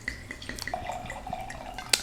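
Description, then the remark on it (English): Cabernet Sauvignon wine of the Chasing Lions brand pours from a freshly opened bottle with a soft, steady trickle and faint gurgle, light drips at the start and a bright glass clink near the end, fairly quiet with no talking. “Don't we just love that, like, that little pop, that little noise when we open a fresh bottle? All right, let's pour it up.”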